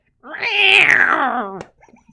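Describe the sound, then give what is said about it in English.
A person imitates a cat with one long, drawn-out meow, its pitch sliding downward over about a second and a half, followed by a brief bit of quieter vocal noise. “And then they would be shouted down like the cat sound that you just did.”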